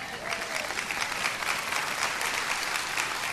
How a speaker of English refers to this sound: Amen? You should be clapping at that.